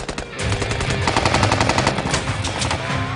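gunfire

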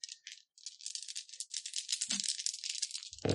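dice being rolled

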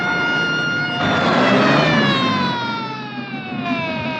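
ambulance siren approaching

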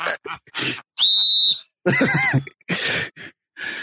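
whistle blown

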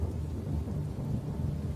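thunder booming

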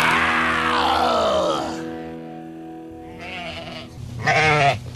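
sheep bleating

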